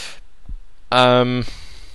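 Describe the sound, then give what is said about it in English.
A single voiced hiccup, a sudden half-second gulping sound with a buzzy, mid-pitched tone, preceded by a faint low thump in otherwise quiet surroundings. “Oh, great hiccups.”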